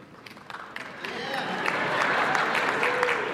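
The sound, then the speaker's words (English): At a church, a parent starts with a few sharp, scattered hand claps, then the clapping thickens into a steady, louder wash of applause with voices murmuring underneath. “That was a parent clapping.”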